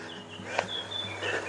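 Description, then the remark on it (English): A bird sings thin, high whistled phrases over a steady low mechanical hum from a water pumping station, with a brief click partway through. “He's in full song.”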